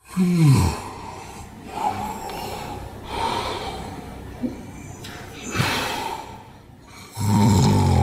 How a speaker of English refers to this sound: let's compare Natalie's snoring to this mm-hmm. recording that we have where it's a clear case of sleep apnea